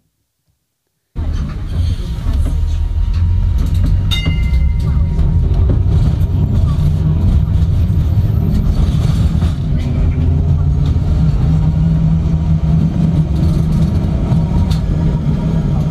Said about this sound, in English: Welcome to the Tedcast tram. All right, let's start it up. And here we go.